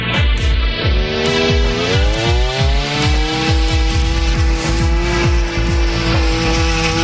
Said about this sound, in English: That's actually a chainsaw sound, just so you know. It's a chainsaw. It's a leaf blower. No, that's a chainsaw. No. I would know, okay? I operate all types of machinery. Okay. It's a chainsaw.